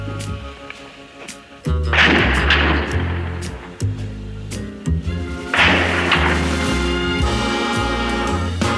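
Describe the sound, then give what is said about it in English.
Gunfire in a 90-minute gun battle between police and shots from a limestone tower, on a hot day past 90 degrees: many sharp cracks in an irregular, rapid rhythm, punctuated by two heavier rumbling bursts of blasts. It is loud throughout, with no voices. “Sirens screaming for the 90 minutes that the gun battle was in progress.”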